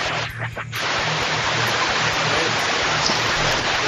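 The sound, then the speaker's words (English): Steady, dense rush of running water like a shower spraying, loud, filling the whole clip with a constant hiss after a brief dip at the start; no talking. “What the heck is that? Who's in the shower?”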